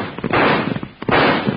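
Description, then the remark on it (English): Six-gun revolver shots ring out, two loud, sharp blasts with rough, rumbling tails and a few smaller cracks between them, muffled and dull in tone, with no one talking. “Put that six gun to work.”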